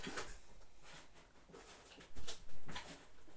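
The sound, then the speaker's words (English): Kittens make small, scattered noises in the background, a string of brief soft bursts with two louder cries near the end, over a faint steady hiss and no talking. “I really think it's not a good idea, but maybe I'll title this episode featuring kittens.”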